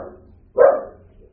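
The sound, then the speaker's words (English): A single sharp, loud dog bark rings out around the middle, with a fainter trailing sound before and after against a quiet background. “Now we got a barking dog in here.”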